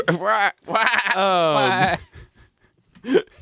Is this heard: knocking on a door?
no